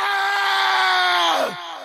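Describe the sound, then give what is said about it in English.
A cartoon character lets out a furious, drawn-out yell, loud, holding one strained pitch for over a second before it sags and breaks off, with nothing else around it. “Lianchu just does this angry, I'll include in the show, he has this furious yell.”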